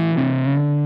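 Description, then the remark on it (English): A warm, dark electric guitar tone played on the neck pickup with the tone controls rolled down, a sustained distorted chord ringing with thick low harmonics and a slight shift partway through, with no talking. “I'm going to roll the tones down. Down. And let's see what's up in the neck.”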